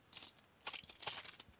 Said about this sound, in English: All right, here we are. Ah, the lovely, luxuriously well-appointed FTH Radio Studios. All right, let's go ahead and get the keys out of here. Unlock the door.